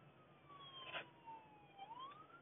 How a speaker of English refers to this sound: Don't mind the siren.